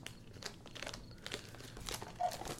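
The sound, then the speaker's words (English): Crinkly foil wrappers of Space Jam: A New Legacy trading card packs being torn open and crumpled, a steady stream of crackling rips and rustles with a few sharper bursts, moderately loud and with no talking. “All right, let's open up cards before I start freaking out.”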